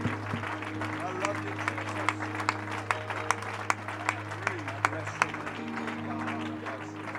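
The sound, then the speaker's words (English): A large group applauds steadily for several seconds, giving the Lord a hand clap of praise at a worship service, the clapping dense and sustained, with a low organ-like tone held underneath and occasional sharper claps standing out. “Once again, why don't you give the Lord a hand clap of praise in anticipation of his will.”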